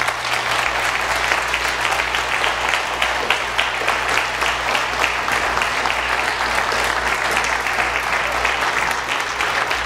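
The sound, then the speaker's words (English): Sustained clapping fills the whole stretch, a dense, steady wash of many hands with no one speaking over it, as a church audience applauds on request. “if there's anybody in this room who has seen the character of Christ in Brother and Sister Solstrand, I wonder if you'd just clap right now”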